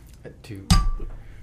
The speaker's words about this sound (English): So do you toast? We can toast.